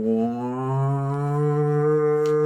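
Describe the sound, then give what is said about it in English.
A person imitates a siren with a steady, droning hum that holds for a couple of seconds, its low pitch slowly sliding upward. It is fairly loud, with no other voices or sounds. “And then there is, like, this siren that goes off. It goes like...”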